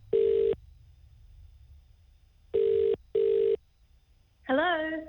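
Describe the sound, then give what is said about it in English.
A phone line rings out with a steady buzzing ringback tone, one burst followed by a quick double burst, over a faint low hum before a voice picks up and speaks, on a call placed by radio station The Edge. “So this is a bit of an odd phone call to be getting.”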